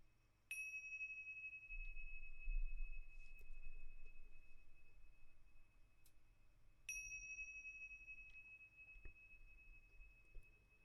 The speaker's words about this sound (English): Allow your hands to rest here for a few moments more, simply noticing, breathing gently in and out in harmony with the chimes.